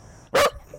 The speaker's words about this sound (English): you got the dog to bark. And my ears are popped. Yeah, sorry. Mine too.